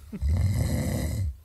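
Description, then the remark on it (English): A single deep, rumbling snore, fairly loud, a rough vibrating inhale lasting about a second before fading out. No voices are heard. “That's snoring.”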